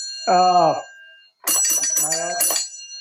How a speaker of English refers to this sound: I'm dinging a bell. Oh, right. What's the bell? What was the bell used for? So the bell was basically, it's for signalmen to differentiate what kind of trains were going to be coming through